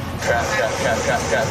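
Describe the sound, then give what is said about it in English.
A large truck's engine drones steadily with heavy road noise as it accelerates onto interstate traffic, while a muffled voice speaks faintly underneath. “I cannot believe I'm getting on the interstate. Accelerate. Stay on this side. Accelerate. Go faster.”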